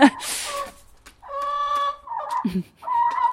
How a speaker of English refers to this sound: I'm sure they're going to be bickering until they figure out who can still be head hen